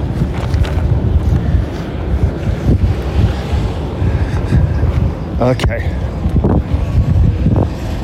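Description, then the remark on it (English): Breeze buffets the microphone in a steady, rumbling low roar that gusts unevenly throughout on a nice, not too hot day, while a voice speaks briefly over it. “Not too hot. A little bit of a breeze.”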